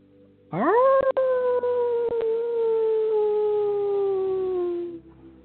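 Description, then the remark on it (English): A human voice imitates a wolf, giving one long, loud howl that swoops up quickly and then glides slowly downward for several seconds before fading, with no talking around it. “So gently breathe deep and allow all of us to howl and allow all of us for our howling to be heard as love, peace, and healing.”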